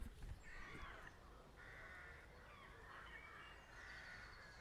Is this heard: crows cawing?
yes